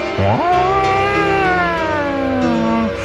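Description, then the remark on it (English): A loud attack siren in a song sweeps quickly up in pitch, then holds a long, steady wail that slowly sags downward, filling the whole stretch with no voices. “When you hear the attack siren, you have 4 minutes to respond, or something like that.”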